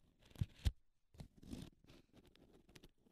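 A folded sheet of paper being handled: two quick soft taps, then a stretch of dry crinkling and rustling as it is unfolded. No one speaks.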